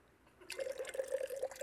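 Clear water pours steadily into a container, a bright trickling stream starting abruptly and continuing with a slowly rising tone as it fills.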